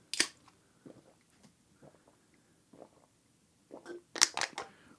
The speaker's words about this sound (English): Three gulps. We can hear it.